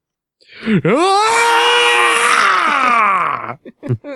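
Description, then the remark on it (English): A man acts out one long, loud, strained scream of pain, held for about three seconds with a wavering pitch that sinks at the end, then a couple of short breathy grunts. “Scream in pain.”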